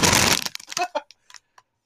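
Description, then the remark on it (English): A bag of maggot cheese chips, held right at the microphone, rips open in one loud, hissing tear lasting about half a second, followed by several scattered crinkles and crackles of the plastic that trail off into quiet. “Okay, I was gonna say, hold on, gotta open it right up at the mic for that ASMR effect.”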